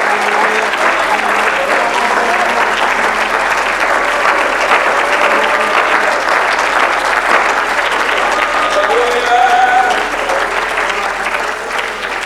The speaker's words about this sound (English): Oh, let's clap our hands to the Lord.